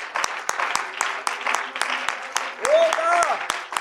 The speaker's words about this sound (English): Give him a hand clap of praise before we sit down this morning. Hallelujah.